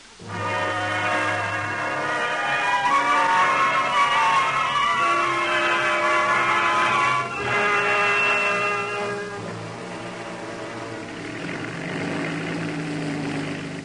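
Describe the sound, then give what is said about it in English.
The 50-horsepower engine of Harriet Quimby's little creaky monoplane drones and putters steadily as she flies through low morning fog over the English Channel, a loud buzzing hum with shifting tones that runs throughout, easing slightly toward the end. No one speaks. “And into the fog that hung low that morning over the English Channel, Harriet Quimby guided her little creaky monoplane. She was not alone. Fear rode beside her as the 50-horsepower engine puttered through the enveloping mist.”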